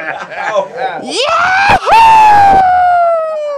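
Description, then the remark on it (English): A man's voice imitates a yahoo scream, a loud whoop that rises sharply in pitch and then holds a long, strained wail before trailing off, with some short vocal sounds leading into it. “We were able to hear … do his yahoo scream”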